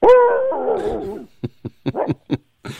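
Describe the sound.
A voice imitates a dog barking at night, starting with a drawn-out, wavering howl, then breaking into a quick string of about six short, sharp barks, fairly loud.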